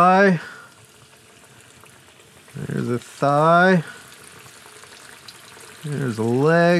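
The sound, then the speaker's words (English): Chicken pieces, including a leg, fry in hot oil in a skillet with a steady, crackling sizzle that runs throughout at a moderate level, while a person speaks in short phrases over it. “It's the one rule about frying. You can never overcrowd your skillet.”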